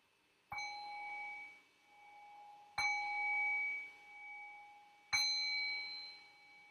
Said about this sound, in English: And so in the next few moments, I'll ring the sound of the bell to signal the end of this very brief guided meditation.